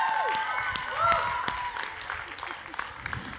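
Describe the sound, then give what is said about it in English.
An audience applauds steadily, a dense wash of clapping that holds at a fairly even loudness throughout, with a few shouts and whoops rising above it. “Clap louder. Clap so they can hear you on Capitol Hill.”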